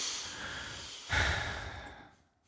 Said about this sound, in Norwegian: Ja, ja. Mange som pustet tungt her.